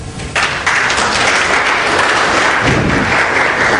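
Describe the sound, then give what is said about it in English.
An audience bursts into applause to answer the speaker's question of who has things in their past they don't like, building quickly after a brief quieter start into a dense, sustained wash of clapping that stays loud and steady throughout, with no voices heard. “How many, through round of applause, have things in your past that you don't like?”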